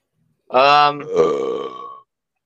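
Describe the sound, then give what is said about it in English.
A single loud, drawn-out burp, rumbling and voiced for about a second and a half before cutting off, with silence around it. “Who burped?”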